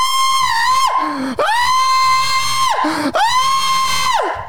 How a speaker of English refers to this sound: Screaming.